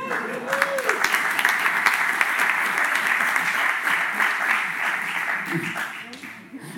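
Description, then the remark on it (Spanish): A crowd applauds steadily for a woman as she gets up from her chair, a dense wash of clapping that holds for several seconds with no break. A voice or two calls out faintly beneath it near the start and again near the end. “Dadle un aplauso porque tarda en salir de la silla”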